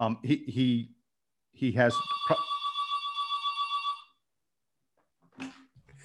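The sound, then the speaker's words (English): A home telephone rings with a single rapid, trilling burst lasting about two seconds, loud, between short bits of people talking before and after. “He has a phone in his home.”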